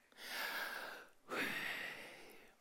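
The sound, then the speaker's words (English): A person breathes in and then out, two long airy breaths of about a second each, fairly loud, deliberately voicing the name Yahweh as pure breathing, with no other words spoken. “Very breathy. What does that sound like to you? Yahweh. Breathing.”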